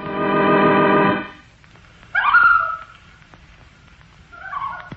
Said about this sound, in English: And Busy Bee told her that it was a loon, and that the loon was a big bird like a goose, and it lived on fish